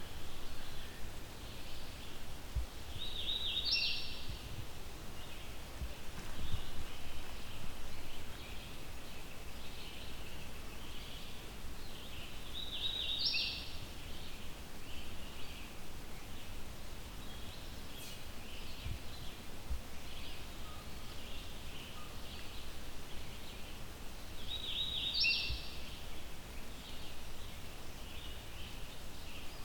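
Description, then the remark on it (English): A songbird sings a short, high, whistled 'weeta weeta weetio' phrase three times, spaced roughly ten seconds apart, in a fairly dense, mature forest over a steady hiss of forest ambience, with no talking. “So I've been able to get myself a little closer to this bird.”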